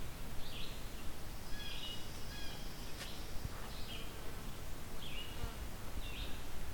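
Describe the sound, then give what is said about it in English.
Faint, high bird trills repeat in short bursts against a steady hiss of background noise, each phrase swelling and fading slightly, with small shifts in pace between them. Fairly quiet. “because they do this thing where they not only get quieter and louder, but they sometimes speed up and slow down, just very subtly.”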